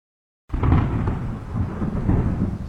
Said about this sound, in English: It's raining outside the Abernathy building.